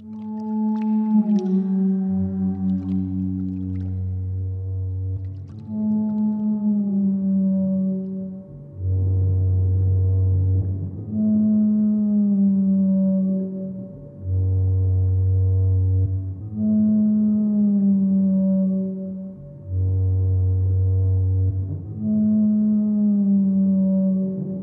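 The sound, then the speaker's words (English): Digitally processed flute notes, low and long-held, swell in slow repeating phrases with a moaning, whale-like tone, and a brief washing-up bowl splash at the start, recreating Daphne Oram's 1958 BBC Radiophonic Workshop piece The Ocean. There is no talking. “My processed flute notes and washing up bowl splashes are an attempt to recreate one of the first pieces Daphne Oram worked on at the BBC Radiophonic Workshop in 1958, The Ocean.”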